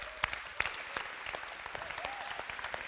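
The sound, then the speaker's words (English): An audience claps for themselves in dense, steady applause, many hands overlapping into a continuous crackle with a few sharper, louder claps standing out. No one speaks over it. “Anyway, so I wanted to start off and just have you guys give a round of applause for yourselves.”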